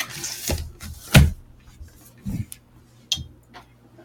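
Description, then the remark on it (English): A male pet cat making noise: a handful of sharp knocks and clattering bumps at irregular intervals, the loudest thump in the first half, over a low steady hum with no talking. “The cat made his appearance.”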